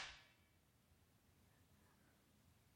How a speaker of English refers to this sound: Clap how you clap. Keep all of this in. Keep all of this in. Clap how you clapped.